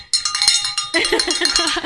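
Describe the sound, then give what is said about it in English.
A bright, metallic bell rings loudly with shimmering high overtones, struck repeatedly in quick succession to mark donors calling in; partway through, voices join in and talk over the continued ringing. “So, oh yeah, you want, well, we got to get a little closer to ring the bell.”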